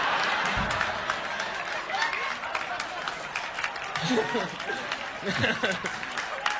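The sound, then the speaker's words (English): A crowd applauds steadily throughout, a dense wash of many hands clapping at moderate volume, with some murmuring voices and brief laughter mixed in. “You sure you want to clap?”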